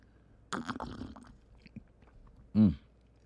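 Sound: slurping hot tea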